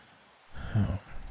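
Steady, soft rain hiss runs throughout, with a brief low, breathy voiced sound like a groan rising over it midway before the rain carries on alone.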